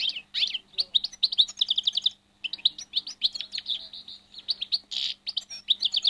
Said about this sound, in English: It's another bird that's growing in numbers, the goldfinch.